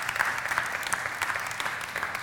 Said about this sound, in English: And last year, during COVID, we were able to plant almost 1,000 churches around the globe, which is pretty incredible, exciting stuff. You can clap for that.